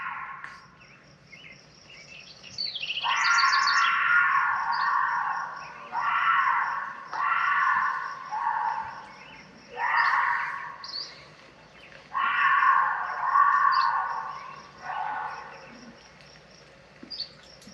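A mountain lion's eerie screaming call, about six drawn-out, wavering shrieks in a loose sequence, loud and harsh, over a steady high chirping of crickets with no one talking.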